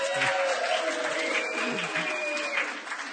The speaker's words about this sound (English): I was going to say hold your applause, but no, go for it. Do it one more time.